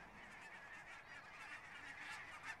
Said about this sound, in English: Well, wind is blowing, and so the geese are honking. Traveling geese, the human heart, too, wanders. Honking geese, I picture skies over inns.